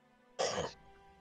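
coughing and throat clearing

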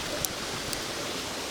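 flowing river water

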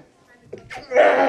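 sneeze

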